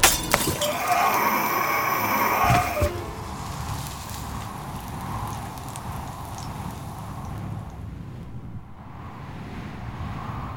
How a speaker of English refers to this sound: You swung that vase right down on his head! Yeah. Lucky enough there was water in it to put out his head.